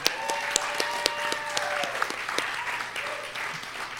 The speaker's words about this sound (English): Speaking of which, before we get going, audience, can we get a round of applause for the Factory Obscura staff?